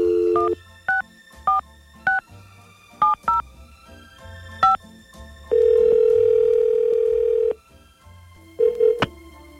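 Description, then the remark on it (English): Keypad tones beep in quick, uneven succession as a telephone number is dialed for a call from the B95 radio show, followed by a steady, loud telephone tone lasting about two seconds, then a brief burst of tones at the end. No talking. “We're going to get on the phone with him, and we're going to bust out CNC Floral.”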